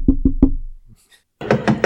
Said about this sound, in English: So they get to their friend's house. They get out, and they're just freaked out. They get out and start banging on the door.